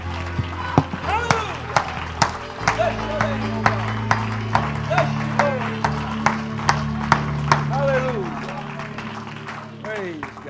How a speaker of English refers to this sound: Give the Lord a big hand clap and shout of praise before you're seated.